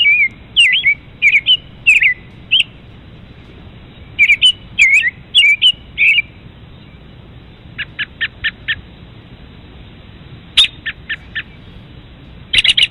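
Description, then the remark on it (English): A bird-tweeting sound effect: bursts of bright, high chirps in quick clusters, pausing briefly between groups, with a short run of sharp evenly spaced pips near the end. Loud, no voices. “what's tweeting?”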